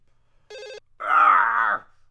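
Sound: telephone ringing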